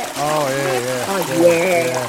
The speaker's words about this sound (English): Who knew I'd be so excited about a toilet flush? I got to say, sometimes that's the greatest sound in the world, isn't it? A decent toilet flush. Here, let's enjoy one right now.